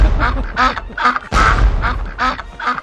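Ducks quack loudly in a rapid, overlapping series of harsh nasal calls, roughly eight quacks in under three seconds, with no talking.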